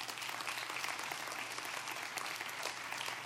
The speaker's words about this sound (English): Come on, let's give God a round of applause for that.